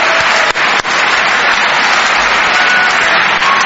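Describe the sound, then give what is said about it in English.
Steady, loud applause from an audience thanking the Mentor Graphics Foundation, a dense wash of many hands clapping together that holds at an even level throughout with no voices on top. “So can we have a good thank you to Mentor Graphics Foundation.”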